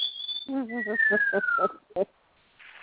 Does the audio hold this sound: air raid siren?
no